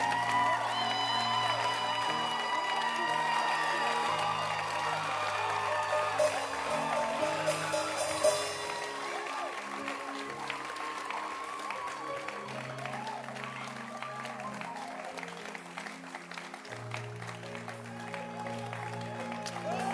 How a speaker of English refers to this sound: So let's clap our hands for Bishop Kobe for redemption.